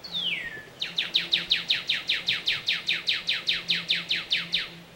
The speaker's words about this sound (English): But as Norman's standing over his tee shot on 13, there's a bird that freaks out, just tweets like crazy.